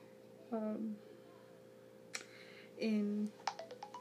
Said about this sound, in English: There goes my phone. I was just gonna say, I thought I had lowered the volume.